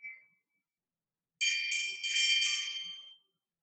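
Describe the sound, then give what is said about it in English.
A bright, shimmering meditation bell tone rings out clearly and sustains for a couple of seconds before fading away, preceded by a brief, faint ping. No one speaks. “So thoughts, emotion, feeling arise just like the sound of the bell, just like the breath.”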